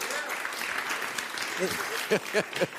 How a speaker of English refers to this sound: Every time you want to talk, this guy's getting applause. As usual. I said everything I wanted to say. It is a applause break. You guys missed it.